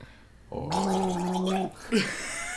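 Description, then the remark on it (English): A person gargles a sip of water from a tankard for about a second, a bubbly throaty rattle with a steady hum underneath, followed by a brief vocal grunt. “Yeah, I'm gonna take a sip out of my tankard. Water. I gotta gargle this one.”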